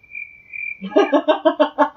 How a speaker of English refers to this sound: I have crickets.